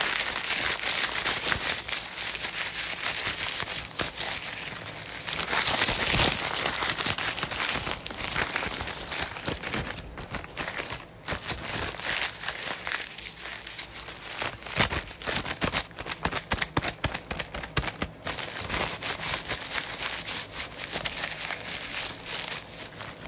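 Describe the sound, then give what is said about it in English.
Loud paper being crumpled and crinkled aggressively and continuously as an ASMR trigger, with dense crackling bursts and occasional sharper tearing-like rustles, no voices. “Okay, so that was the aggressive ASMR trigger with paper. This paper looks really messed up afterwards, but yeah.”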